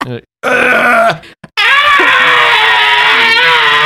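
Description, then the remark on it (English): A person imitates Godzilla's roar with loud, strained vocal bursts: a short grunt, a rising screech, then a long, harsh, wavering roar that drags on for over two seconds. “Like the, and he does like the Godzilla noise and he starts breathing fire.”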